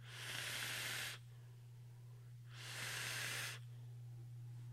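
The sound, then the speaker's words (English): A red Noisy Cricket vape device with a Velocity RDA, fired by pressing its button, hisses out vapor in two steady bursts, each about a second long with a pause between, bright and airy over a constant low electrical hum. “You just press the button. It's like, oh, did you want vapor in your soul?”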